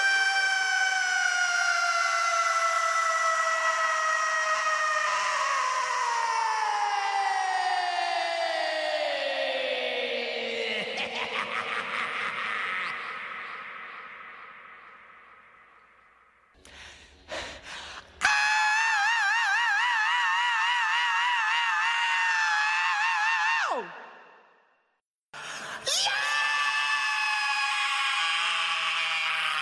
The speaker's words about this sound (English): Another clip that people seem to love is this one, which is called Scream versus Scream versus Scream versus Scream.